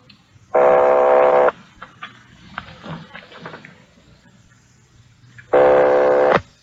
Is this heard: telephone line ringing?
yes